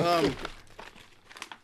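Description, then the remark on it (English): A short voiced sound opens, then a popcorn bag crinkles and rustles in a string of uneven, crisp bursts of moderate loudness that fade in and out. “Oh, bring me a popcorn, real quick.”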